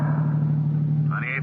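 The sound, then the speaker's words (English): A car engine idles with a steady low hum and rumble amid city traffic, with a brief higher tone rising near the end. “Shouldn't you pull over and park? What, in this traffic? I'm practically parked already.”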